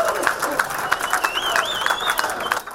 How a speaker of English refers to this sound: And they're all applauding.